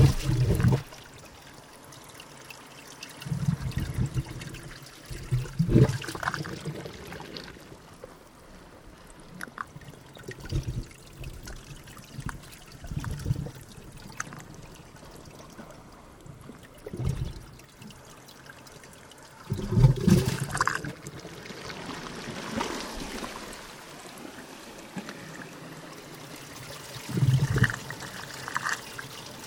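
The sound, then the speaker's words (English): Close-up trickling and lapping of tiny wavelets in shallow tidal pools off the coast of New South Wales, Australia, with irregular small splashes and gurgles swelling and fading over a soft watery wash, no voices. “got his microphone really, really close to those tiny little wavelets found in tidal pools.”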